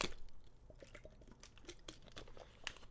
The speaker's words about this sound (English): Excuse me, let me get some water.